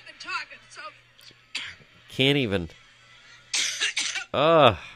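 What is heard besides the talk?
woman's coughing fit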